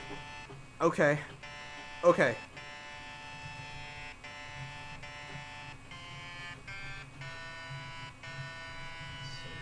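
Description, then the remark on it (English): A harsh electric buzzing tone drones almost continuously, broken by a few short gaps in an on-off Morse code signal pattern; a voice speaks briefly over it near the start. “Okay, here's the pattern. What does that say?”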